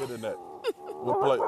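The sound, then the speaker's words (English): On ESPN's NFL Live, broadcast live from Orlando, a man's voice mimics a dog, letting out a few short, yelping barks and whines, with a sharp rising yip partway through. No real dog is present. “It's just … and his dog sound.”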